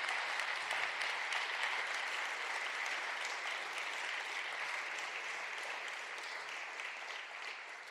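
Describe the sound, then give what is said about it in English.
A church audience applauds steadily for people who have been Christians for 40 years, a dense wash of many hands clapping that holds strong throughout and eases slightly toward the end, with no voices standing out. “I think we need to applaud those that have been faithfully calling Christ for 40 years.”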